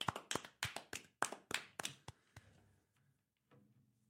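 A short burst of hand clapping, about ten sharp claps in a fairly quick, slightly uneven rhythm that thins out and fades after about two seconds, close and fairly loud, with no talking.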